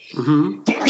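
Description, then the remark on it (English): A single sneeze: a brief voiced intake rising into a sharp, noisy burst at the end, loud and abrupt, with no other sounds around it. “Excuse me. Bless you.”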